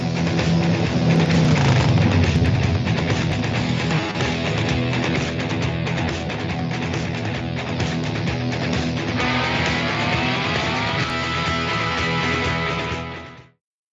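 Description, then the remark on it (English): A loud motorcycle engine roars and revs continuously, its pitch climbing sharply in the second half as it accelerates, then it quickly drops away into silence. No one speaks. “How did he get a motorcycle in here, let alone out of here?”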